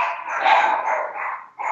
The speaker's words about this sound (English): mute yourself dogs. If you're not talking.